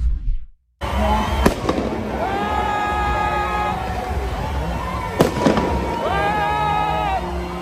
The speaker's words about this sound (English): It's just them shooting fireworks into the air. Some of them were shot at the cops.